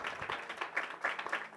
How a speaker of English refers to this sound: How's everybody doing today? Come on, clap your hands.